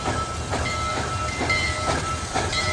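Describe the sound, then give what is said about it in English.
A steam locomotive pulling Abraham Lincoln's train chugs along steadily, its rhythmic chuffs and hissing steam rolling over a constant rumble of moving rail cars, loud, with no voices. The lightweight engine is powered by steam. “Lincoln was traveling on the best locomotives.”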